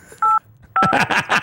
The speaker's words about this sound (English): you already dialed the phone. That was perfect. I'm sorry. The fingers you use to dial are too fat.